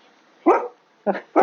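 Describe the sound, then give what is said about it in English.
A dog named Wolfie barks three times, loud and sharp, with the last two barks coming quickly together after a short pause, barking at people going into their house in the countryside. “You can't bark at people going into their house, wolves.”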